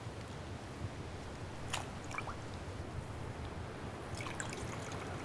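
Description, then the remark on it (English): A sponge squelches as guards soak it in vinegar, with a soft trickle and a few scattered drips over a steady low rumble and hiss. Fairly quiet, no voices. “It appears the guards are soaking a sponge, not in water, in vinegar.”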